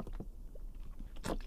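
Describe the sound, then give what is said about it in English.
Someone takes a gulp of water: faint wet mouth clicks, then one short, louder swallowing splash near the end, over a low steady hum. No one speaks. “Oh, that's some good water right there.”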